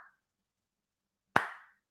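One sharp, loud hand clap rings out alone and fades quickly, following a faint brief tail of sound at the very start. No one speaks.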